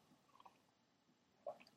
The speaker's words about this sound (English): So I'm going to take a sip of my tea right now, if you don't mind. Hang on a second.